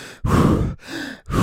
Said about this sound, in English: And hold. Oh God, Wim Hof breathing. I still feel like I'm going to faint every time, but for some reason I'm buying into this fad.